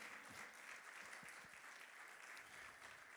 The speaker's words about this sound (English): Amen. Let's all give the Lord a hand clap of praise right there.